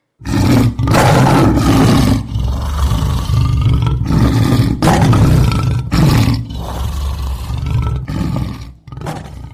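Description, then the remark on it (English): A lion roars loudly, a series of deep, rumbling bellows that swell and break off in repeated bursts, ending with shorter grunting calls. “If you were to hear a lion's roar outside your door, it should scare you.”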